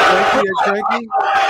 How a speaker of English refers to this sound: That's everyone in this room just booed you out of the building.